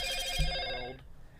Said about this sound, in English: I got a notification about the asteroid. I'll go check it. Hold on.